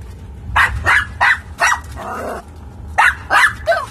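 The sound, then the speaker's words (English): A large Great Pyrenees dog barks repeatedly during a storm, sharp loud yaps in two quick clusters separated by a short low growl, with no one talking. “let me deal with the dog”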